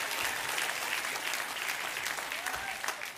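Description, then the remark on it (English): A church audience gives the Lord a clap offering during a sermon, clapping loudly and steadily, a dense wash of many hands applauding together that holds throughout with no pauses. “If you say amen, give the Lord a clap offering.”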